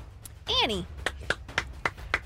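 A short sliding vocal whoop, then about five sharp, evenly spaced handclaps from a single person in a quick steady rhythm, like a small, solo round of applause.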